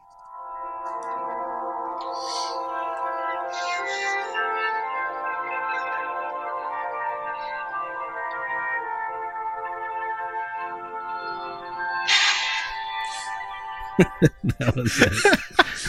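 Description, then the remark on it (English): Sustained brass and orchestral tones play steadily during a concert, then a breathy burst cuts in, followed by several loud, sharp blasts from a trombone as a man sneezes into it mid-performance. “man sneezes into trombone during concert”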